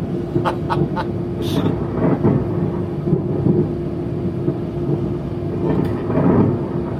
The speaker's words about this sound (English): There's the thunder.